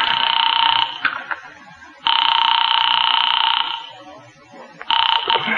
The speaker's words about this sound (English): I am actually ringing North Tacoloma 3.